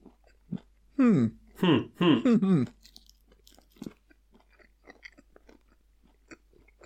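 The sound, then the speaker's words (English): Chewing of a solid orange chocolate egg, with soft crunches and wet mouth clicks continuing steadily, preceded by a few loud, drawn-out humming vocal sounds from the person eating. “I'm just sitting and watching you chew chocolate.”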